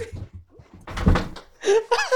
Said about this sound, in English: Dude, I got so caught up in the t-shirt, I forgot I was standing over a plastic chair, and the second I sat down, I felt the leg almost kick out.